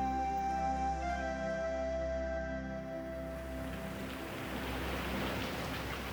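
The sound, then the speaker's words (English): Rain pelts down at night in a steady, dense hiss that grows heavier over a few seconds, over a low sustained hum, with no voices. “At night, when the wind whipped and the rain pelted, Bobby huddled for shelter beneath the table stone beside the grave.”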